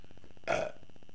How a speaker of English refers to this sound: Well, he looked at it and belched.